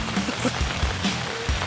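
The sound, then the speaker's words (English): Steady rain patters across the whole short stretch, a dense hiss of drops with a few soft low thumps mixed in and no voices. “I don't think he was going to do much more with that rain.”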